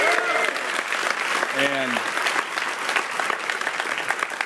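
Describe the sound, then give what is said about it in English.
Audience applause for the $4,000 raised by the Egginator egg-throwing fundraiser for a homecoming celebration: a dense, steady clatter of many hands clapping throughout, with a couple of brief sliding whoops from voices rising above it near the start. “Let's have a round of applause for it.”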